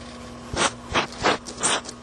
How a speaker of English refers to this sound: That was Kike. Did you hear that sniffing? That was my Kike sniffing his camcorder.